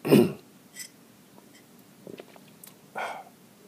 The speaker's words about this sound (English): Sorry, just a second. Allow me to sip this tea real quick, you know.